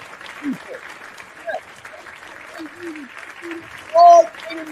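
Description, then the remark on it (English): A crowd claps steadily throughout, a dense crackle of many hands, with scattered cheers and whoops rising above it and one loud, sustained yell near the end. “Go ahead, clap it up. Give yourself a round of applause because the WWE needed this.”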